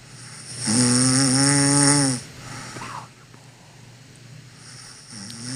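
A single loud, rumbling snore with a buzzing, drawn-out tone lasts about a second and a half close to the microphone, then fades to quiet breathing and soft background noise.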